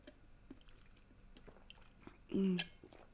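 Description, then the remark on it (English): Mouth sounds of someone sipping Pepsi Max from a cup: soft wet clicks and slurps, then a louder gulp and satisfied exhale near the end. “I actually genuinely think that was the best sip of Pepsi Max I've probably ever had.”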